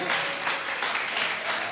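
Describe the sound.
Hands clapping in a quick, steady rhythm, close and fairly loud, the slaps blending into a continuous dense patter with a faint voice underneath.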